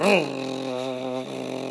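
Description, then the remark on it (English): A voice imitates a heavy Woover push lawnmower being pushed around a yard, with a buzzing, wavering hum that swoops briefly at the start, then holds a low, steady drone for about a second before trailing off. “Now, you just have to pretend that that sound of the mower continues on, even though I'm going to talk for Jacob right now.”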